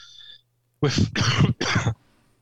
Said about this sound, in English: I have a cough. What you think it is... I just tested negative. After how many days? I've got a cough. So if I have to cut myself off a few times and you hear a bit of a splutter, that's me. I'm fine.